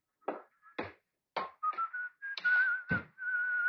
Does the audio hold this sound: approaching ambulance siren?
no